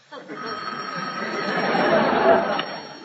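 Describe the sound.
A telephone bell rings in a steady, continuous burst for a few seconds over a busy background murmur of faint voices.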